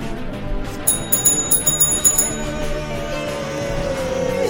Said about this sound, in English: And do the honors. You guys can both together ring that bell.